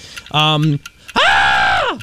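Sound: person screaming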